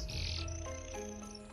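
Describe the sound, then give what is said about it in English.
A mechanical toy canary flutters its mechanical wings and gives a shrill, warbling burst of distorted, mechanical-sounding chirping, loud at first, then trailing into thinner, wavering tones over a low steady hum as its head is stroked. “canary suddenly springs to life again, fluttering its mechanical wings and chirping loudly.”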